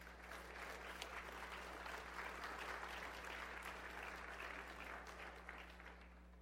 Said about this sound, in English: And you may give the Lord a round of applause for that.